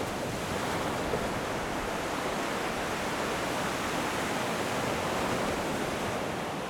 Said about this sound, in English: He looks out at the crashing waves and says, it could even be tonight.